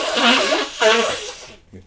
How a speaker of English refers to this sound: I'm just about to blow my nose.